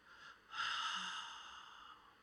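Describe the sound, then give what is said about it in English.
A single long, airy deep breath in and out swells up suddenly and then slowly trails off, quiet, with no talking around it. “Just breathe. In and let go.”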